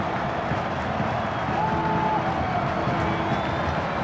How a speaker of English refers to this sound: And this near capacity crowd in full throat on 3rd and 8.